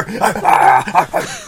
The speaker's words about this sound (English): And then like, oh my god, they're sicking the dogs on us.